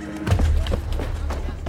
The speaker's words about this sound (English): But the horse rears up, a wild look in its eyes, throwing the attendant onto the hard ground with a loud thump.